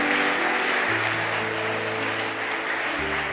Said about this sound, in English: Clap properly for the Lord. Amen.